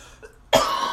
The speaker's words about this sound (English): You can hear her still. She's still coughing. My God. It's never ending. I'm going to be coughing for the rest of my life.